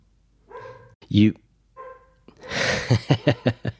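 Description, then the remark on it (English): A dog barks in the background a few times, with a sharp yelp among them, then breaks into a quick run of loud, rhythmic barks over a noisy background. “Yeah, if we have dogs barking in the background, it's fine,”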